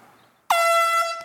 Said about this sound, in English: This is called the golf course air horn. When people tee off, when they're coming down with their swing, we're going to blow these air horns.